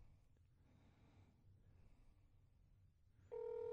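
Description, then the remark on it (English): After a few seconds of quiet, low rumbling background with faint breaths, a loud, steady telephone ringback tone abruptly begins near the end as an outgoing call to a customer service line rings after pressing 0 for a representative. “No, because it's ringing.”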